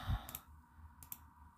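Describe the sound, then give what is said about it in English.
A few sharp, quiet clicks in pairs as someone types on a computer keyboard, with a soft low thump at the start and faint background hum between them. “If you hear clicking and typing in the background, that's what I'm doing.”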